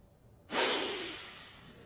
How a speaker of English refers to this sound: Mr. Phillips's incredulous sniff was a triumph of forensic art.